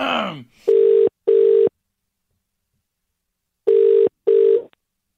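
A phone ringing out on the line: two pairs of short, steady electronic rings separated by a long silent gap, clear and fairly loud, preceded by a brief bit of voice.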